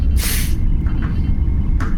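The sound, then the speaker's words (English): A sharp pneumatic hiss of a sci-fi door sliding open as Ambassador Jahl enters the room bursts out over a steady low hum, followed later by a shorter, softer second hiss. No one speaks. “You hear the door open as Ambassador Jahl enters the room”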